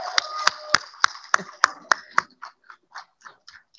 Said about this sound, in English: You all didn't hear me clap and cheer for our own team, but I'm going to do it again.